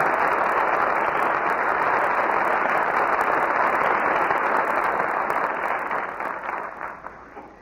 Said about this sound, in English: And our very good friends, George Brent, Roddy McDowell, and Rita Johnson, answer your applause with a well-earned curtain call.